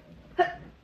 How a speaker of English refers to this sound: Oh, I'm about to sneeze.